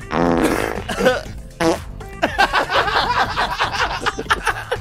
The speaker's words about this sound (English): Because I can sit here and press fart effects all day. How many are there? Oh, there's like about 30. Pages and pages of them.